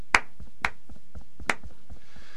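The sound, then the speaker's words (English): Brief, sparse applause at the end of a radio quiz on 10 Radio: three sharp, loud claps stand out at uneven intervals over a run of quieter, steady rhythmic taps, with no voices. “So I think we can all afford a round of applause.”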